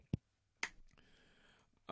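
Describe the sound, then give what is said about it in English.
A couple of soft, isolated hand claps spaced about half a second apart, a light, polite golf clap acknowledging that Ninja Theory created a scholarship, followed by a quiet lull before a voice starts up at the end. “So it's a good thing for Ninja Theory and a nice, polite golf clap to acknowledge that they created a nice little scholarship for everyone.”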